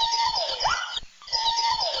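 Two loud, harsh territorial calls of an alala, the Hawaiian crow, a call once common in wild birds but no longer heard in captive ones, each about a second long with a raspy, nasal tone that dips and bends in pitch, separated by a short pause.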